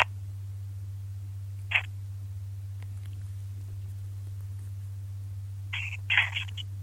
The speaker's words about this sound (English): Hold on, let me plug in the phone.